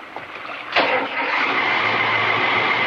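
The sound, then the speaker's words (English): A boat engine cranks and catches with a sharp burst, then settles into a steady, loud rumbling drone, a motorboat motor starting up. “Try the engine now.”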